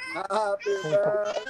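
young child crying

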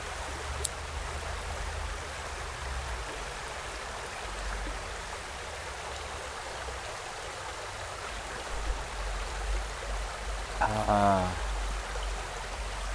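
flowing river water

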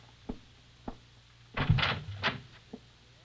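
closet door being opened

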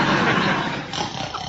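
snoring

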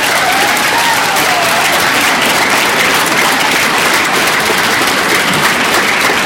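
audience round of applause

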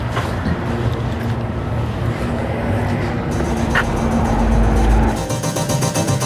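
car driving past

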